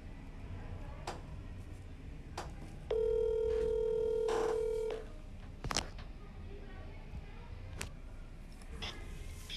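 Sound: telephone dialing and ringing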